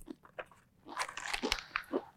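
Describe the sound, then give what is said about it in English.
Crisp crunching as someone bites and chews a snack, with several irregular bursts of crackly munching growing louder toward the end, and no talking. “If you don't mind, just gonna have a little bit of yellow before we start filming.”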